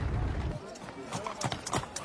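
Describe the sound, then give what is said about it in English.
Horse hooves clip-clop on a hard surface, a quick irregular run of sharp clops that picks up in the second half, with a low rumble at the start and faint voices underneath. “Take my horse.”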